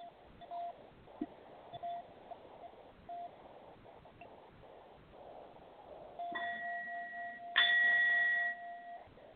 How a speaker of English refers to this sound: We're going to be connecting with a brass bowl, letting there be movement through your body to unblock any type of interference in your space.